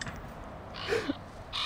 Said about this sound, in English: What happens when you send him a text is you just get a crow sound sent back to you.